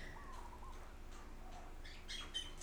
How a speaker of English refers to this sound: I don't know if you can hear the birds. That one's a little not the most peaceful, but they've been peaceful up until that one.